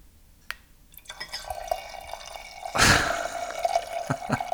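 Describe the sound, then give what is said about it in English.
Sparkling water poured into a glass, starting with a few clinks and drips, then a steady fizzing pour with a brief louder gush near the end; fairly quiet, no talking. “If they only knew that you're just pouring sparkling water into a glass.”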